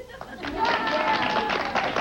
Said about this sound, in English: they're laughing and they're applauding because he's being honest